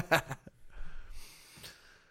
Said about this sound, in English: You're breathing hard from the gravy.